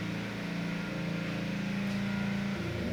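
A lawnmower engine runs steadily outside, a continuous low droning hum with a buzzy, rough edge and a slight rise in pitch toward the end, with no one talking.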